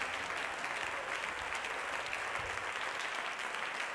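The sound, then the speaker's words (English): An audience claps hands to give God praise in sustained, dense applause, a steady wash of many overlapping claps that stays loud and even throughout, with no speech on top. “Can we clap our hands and give God praise right now?”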